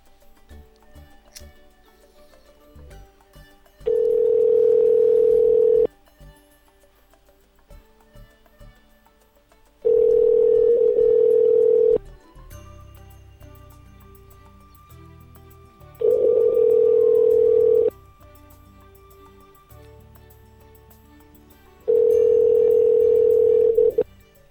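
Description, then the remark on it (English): A telephone ringback tone sounds four times while calling a cell phone number, each steady two-second burst separated by several seconds of near silence, preceded by a few faint clicks as the call connects. “Okay, this is the last number. I have got someone else to call, though.”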